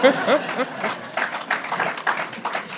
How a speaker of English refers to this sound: You know, you can clap on that.